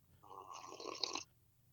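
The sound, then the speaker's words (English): A single loud, wet slurp right up against the microphone, lasting about a second and ending abruptly, with quiet before and after. “But yeah, because I didn't even hear the slurp.”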